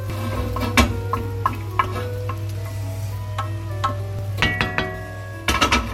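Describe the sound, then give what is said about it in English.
Onions taken out of the oven are tipped into a big mushroom pot with a soft tumble, then a steady sizzle runs under irregular scraping and stirring clinks from a spoon against metal, with a low constant hum throughout. “Tip these onions in with the big mushroom pot.”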